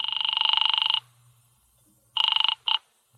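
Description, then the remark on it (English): After a number is dialed, a telephone rings on the other end of the line at Feinberg's Delicatessen: a buzzy, trilling ring for about a second, a pause, then a shorter ring and a brief clipped burst. No one speaks. “I dialed it and waited.”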